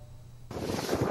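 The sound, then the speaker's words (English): A low motor hum gives way abruptly to a loud rush of wind and splashing water as a tourist boat heads out to sea among the Penghu islands, bound for Malyu or Cat Island. There is no talking. “Tourists take a boat out to sea.”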